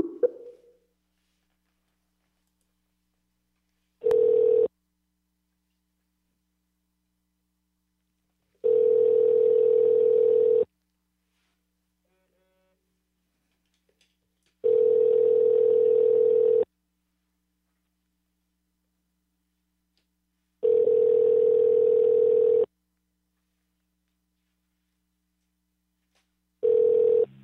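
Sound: telephone call ringing out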